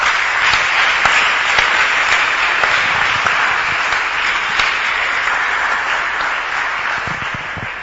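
An audience at a Christian convention claps for Jesus together in a dense, sustained burst of applause, loud and steady throughout with no talking, easing off only slightly toward the end.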